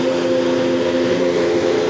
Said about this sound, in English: What you hear in the background is the sound of a Chevrolet IndyCar engine warming up in the garage at Gasoline Alley. It's a sweet sound.